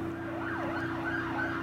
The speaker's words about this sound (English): You may have heard the ambulance go past to go into the hospital. It had a police car in front of it.